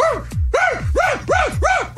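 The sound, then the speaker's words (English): A scared dog, alone in a burning house in Rhode Island, barks in a quick, steady run of about five sharp, loud barks, with no other sounds around them. “And he's like, oh, I recognize that dog. I see that dog dozens and dozens of times.”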